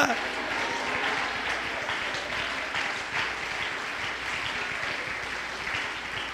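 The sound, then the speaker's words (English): An audience jumps to its feet, clapping hands and shouting hallelujah: sustained, dense clapping with overlapping shouts and cheers, a loud, continuous crowd roar for several seconds with no single voice standing out. “Come on, jump to your feet and clap your hands and shout hallelujah.”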